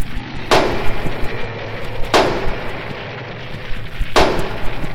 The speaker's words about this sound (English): I walked up the stone stairs to a heavy wooden door and lifted the smoking lion's head knocker 3 times.